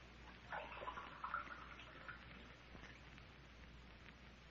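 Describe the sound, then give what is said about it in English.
Water trickles and splashes as it is poured for someone to drink, likely into a glass. A steady, fairly quiet stream about four seconds long, a bit fuller near the start, with no voices. “could I have a drink of water? Oh, sure thing. Now, I'll have it for you in a jiffy.”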